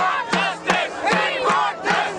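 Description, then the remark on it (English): A large crowd of thousands of protesters in New Delhi, clashing with police in December, shouts and yells together, many voices overlapping loudly, punctuated by sharp recurring bursts at a steady, chant-like rhythm. “Thousands of protesters clashed with police in December following the savage gang rape of a young student on a bus.”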